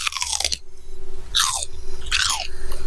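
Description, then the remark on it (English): Loud crunching from chewing something crisp, in three bursts spaced about a second apart, with a steady low hum underneath and no talking. “That was our crunch moment.”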